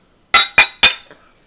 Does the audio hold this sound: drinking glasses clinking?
yes